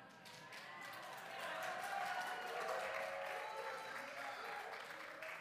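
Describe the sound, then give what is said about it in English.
A church audience applauds in praise of the Lord, a dense, steady roar of many hands clapping that swells slightly and holds for several seconds, with faint voices mixed into the crowd noise. “Give him praise a little bit longer so I can take a sip.”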